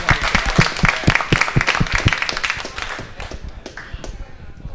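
An audience at a store event applauds for the star of the evening, many hands clapping in a dense, steady patter that begins strong and gradually thins out and softens toward the end.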